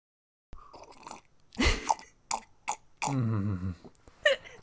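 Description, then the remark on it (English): Slurping of a hot cup of tea with wet mouth clicks and smacks, a few short bursts followed by a longer drawn-in sip, loud with no talking. “That's just slurping and clicking your mouth.”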